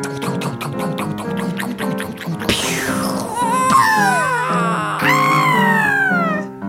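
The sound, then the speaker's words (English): A sound effects artist vocally imitates a helicopter hitting a lighthouse: a rapid, steady chopping pulse, then a sudden crash followed by falling, howling whistles, and a second burst that trails off in descending wails. “… will also do the sound effect of a lighthouse getting hit by a helicopter.”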